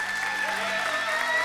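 A crowd at Renew Life Church applauding the campus pastor and his wife steadily, dense overlapping hand claps forming a continuous wash of sound at a constant, fairly loud level with no voices standing out.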